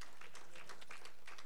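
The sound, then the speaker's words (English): An audience at a morning church service claps hands in praise to God in a brief burst, a soft but steady patter of many overlapping claps with no voices over them. “Can you give God a hand clap of praise in this house this morning?”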